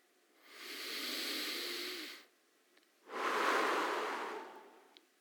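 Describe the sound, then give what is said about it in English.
A single deep breath, airy: a long, steady inhale, a brief pause, then an equally long, audible exhale. No one speaks. “Everybody do that. Deep breath together.”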